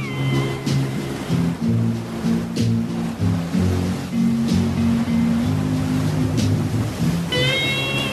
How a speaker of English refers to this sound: Nice, smooth waves upon the shores.